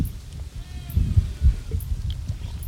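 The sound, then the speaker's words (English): Goats or sheep bleat faintly a few times over a steady low outdoor rumble, the calls thin. “I hope you can hear those goats or sheep or whatever they are.”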